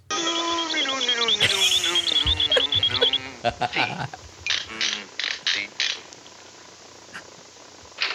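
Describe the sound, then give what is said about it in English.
Typewriter keys clack in an uneven series of sharp, loud strikes, about eight in all. Before them comes a few seconds of a sustained, wavering, voice-like tone. “Can I play the typewriter guy real quick?”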